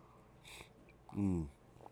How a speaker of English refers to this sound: Get that sniffle out of the way.